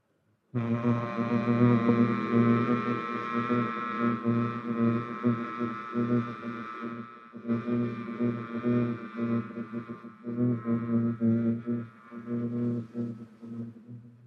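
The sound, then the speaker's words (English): A group of voices hums together in a sustained, layered drone with many overlapping low pitches, steady and fairly loud, pausing briefly for a breath midway before continuing. “Don't overthink it, we're just humming.”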